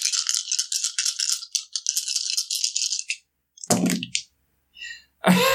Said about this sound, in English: Just roll the fucking dice.